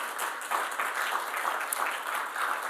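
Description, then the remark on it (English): An audience breaks into steady, sustained applause, dense overlapping claps forming a bright, even wash of sound with no voices standing out. “You can clap for him.”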